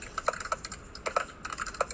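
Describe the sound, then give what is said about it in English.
Rapid clacking of keys on a loud mechanical computer keyboard, a steady stream of crisp taps with a few sharper strokes, no voices. “You got it on the typewriter over there, Quinn? Yeah, dude, type in comments in the chat.”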